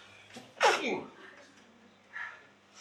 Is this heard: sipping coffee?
no